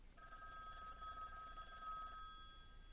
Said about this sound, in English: The Mattachine phone in New York rings all night sometimes with calls asking for help.